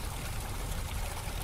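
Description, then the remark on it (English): Water gushes out of a set-off trap in a steady, forceful stream, quickly filling a room and teeming out onto the corridor, a continuous rushing and pouring roar that stays constant throughout, fairly loud, with no voices. “With water, and it's filling up really, really quickly, so we gotta do some...”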